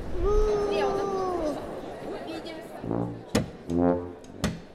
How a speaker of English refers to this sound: The surgery where Morton would demonstrate his new discovery was scheduled for 10 a.m., but he was nowhere to be found, and the assembled crowd was getting restless.